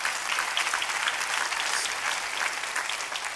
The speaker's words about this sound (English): You can clap your hands.